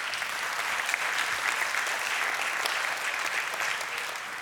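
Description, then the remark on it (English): An audience gives God a round of applause, a dense wash of many hands clapping at an even, moderate loudness for several seconds with no break and no voices rising above it. “Give God another round of applause.”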